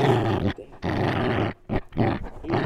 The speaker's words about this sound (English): And enjoy some of my puppies growling. He's playing puppies with his teddy bear. Yeah, please. He loves this thing.